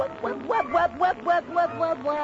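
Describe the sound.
A voice imitates a duck, giving a quick run of about eight nasal quacks in steady rhythm, moderately loud, with no other sounds around it.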